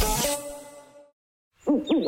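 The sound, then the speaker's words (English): An owl hoots clearly: one drawn-out call that fades, a brief silence, then a quick run of wavering hoots. No voices are heard. “I think he said Whiteman Park is a hoot.”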